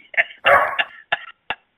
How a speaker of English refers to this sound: It was an old MASH TV show. You heard of MASH? Yeah. Yes, the guy really says, it's a Korean dog. It barks in Korean.